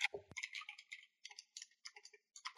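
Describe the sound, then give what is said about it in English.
Quick, irregular clicks of keyboard typing, bright and crisp, coming in short bursts with brief pauses between them, with no one speaking. “You don't need to listen to me keep typing.”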